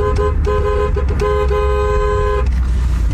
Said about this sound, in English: Enjoy that horn. His neighbors must like do 10 it. Horn salute. Well, I don't understand who was honking if the car is dead.